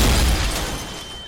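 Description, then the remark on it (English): A violent explosion among graveyard headstones erupts with a heavy, low rumbling blast that fills the space. It then slowly rolls away into a broad, fading roar with a debris-like hiss. “And a violent explosion.”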